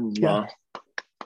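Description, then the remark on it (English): A brief voiced sound from a person, then three sharp finger snaps at an even, steady pace, each a crisp click with silence in between. “I'm snapping on those.”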